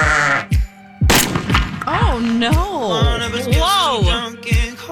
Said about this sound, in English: I pressed the wrong animal. I meant to. That wasn't meant to be a sheep. Whoops.